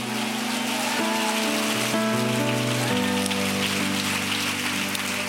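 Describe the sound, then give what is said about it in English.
A church audience claps hands unto the Lord in a dense, steady wash of applause that continues throughout, with sustained low musical chords shifting beneath it. “Come on, with expectation, can you clap those hands, all you people, and shout unto God with the voice of triumph.”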